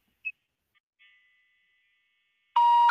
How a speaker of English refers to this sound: I'll try and dial it here locally on my tone dialer. You have to use a blue box tones though.